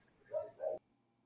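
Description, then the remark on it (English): A pet dog barks twice in quick succession, two short tonal woofs that sound somewhat muffled, with no talking, and quiet follows. “Are y'all hearing my dog bark like that?”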